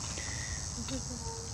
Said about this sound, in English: And the cicadas say amen right now. That's what they're doing right now.